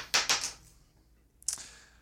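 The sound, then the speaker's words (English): Dice clatter and rattle in two quick bursts, then settle; a final sharp clack follows a moment later as they come to rest, reading 3. Fairly loud, with no talking. “And the dice for this episode reads.”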